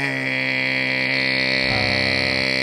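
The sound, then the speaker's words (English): A voice imitates a fire alarm set off during a funeral: one continuous, harsh, buzzing tone held loud for a few seconds, its pitch shifting lower near the end. “It's like a cranky security system. It's the fire alarm.”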